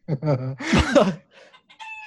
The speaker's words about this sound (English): A chicken. Are you kidding me? Why is that? Well, technically, it's a hen.